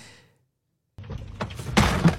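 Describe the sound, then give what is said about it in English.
After a brief silence, a car door swings and knocks against another vehicle with a few solid metallic thunks, the last couple louder than the first, and no one speaking. “What would you do if I door-dinged your vehicle, huh?”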